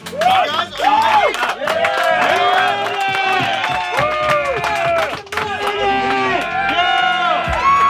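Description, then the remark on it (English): A large crowd cheers and shouts together as a warm-up, in a sustained, loud roar, many overlapping voices rising and falling without a break for the full stretch. “So before we go ahead with this, all the activities today, let's do a warm up, all right? Are you ready? Yeah. Yeah. All right, we need it louder, it's not.”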